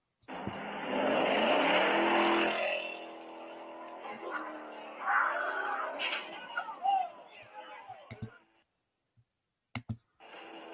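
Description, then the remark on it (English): A loud, roaring Mustang car engine revs hard as it leaves a car meet, then settles into lower rumbles and shifting engine tones, followed by a few sharp clicks and brief bursts. “This is normally how Mustangs leaving car meets go.”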